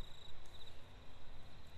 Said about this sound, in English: Oh, is that a cricket? Do you think they get louder as we get closer?